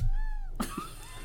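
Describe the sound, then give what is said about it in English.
A cat gives one short, close meow right up against the microphone, followed by a brief breathy snort or huff and faint rustling. “That was the contribution of the cat.”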